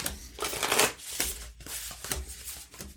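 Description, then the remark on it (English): A deck of tarot cards is shuffled in quick bursts of crisp, papery riffling and flicking, with brief pauses between each pass and no one speaking. “Well, you gotta like get a good randomization going before you can shuffle that way.”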